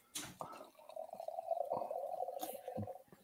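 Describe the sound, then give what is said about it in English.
Beer pours into a glass in a steady, gurgling stream for a few seconds, its pitch creeping upward as the glass fills, preceded by a brief sharp clink or hiss. “I'm going to go grab a beer. I'll be right back.”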